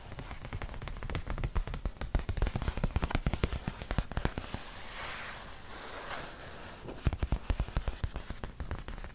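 Stiff House of Hackney wallpaper samples being shuffled and flipped, a busy stream of crisp crackles and rustles that eases into a softer swishing midway, then picks up again with sharp snaps. No one speaks.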